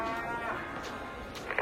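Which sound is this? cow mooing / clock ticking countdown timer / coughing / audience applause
cow mooing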